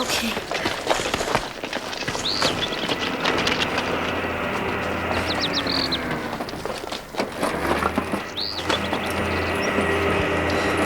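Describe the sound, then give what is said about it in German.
A low, steady diesel drone from a mini excavator digging a grave in a cemetery hums in the distance under a dense wash of rustling noise, with a few short high chirps breaking through. “Aber ich höre einen Bagger. Dort hinten brummt der Diesel.”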